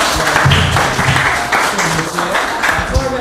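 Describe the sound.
A crowd claps steadily in a dense, sustained wash of applause, with voices cheering and shouting over it throughout the short burst.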